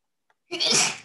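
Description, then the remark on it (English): A single sharp, loud sneeze bursting out after a brief faint intake of breath, with a broad hissy spray of noise that cuts off quickly. “Bless you.”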